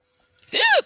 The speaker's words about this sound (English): They're hiccups and they're obnoxious and hurt and I hate them.